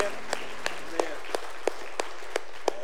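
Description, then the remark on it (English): At the end of a church service, an audience claps together in a steady rhythm: about eight sharp, crisp claps in even time, roughly three per second, over a faint background murmur. “I had this person ask me one time, you know, why we clap at the end of church.”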